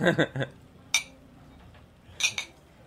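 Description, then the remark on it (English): Glasses of a cucumber drink clink together in a summer toast: a bright ringing clink, then a second, softer double clink a moment later, after a brief bit of clattering and murmuring at the start. “Do you have a toast? To getting drunk all summer and yeah.”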